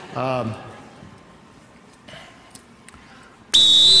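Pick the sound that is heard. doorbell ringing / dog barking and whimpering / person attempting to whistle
person attempting to whistle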